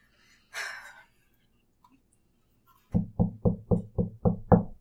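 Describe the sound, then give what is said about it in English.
A soft breathy exhale, a brief pause, then seven firm, evenly spaced knocks on a door, loud, in a steady rhythm. “And you just walk forward and just knock on the...”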